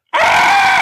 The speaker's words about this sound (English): But an actual sheep scream? Yeah, I've heard it before. Yeah. Yeah. Sounds like a woman screaming. Yep. That shit cracked me up watching that. We finished the movie and I'm like, what does a sheep scream sound like?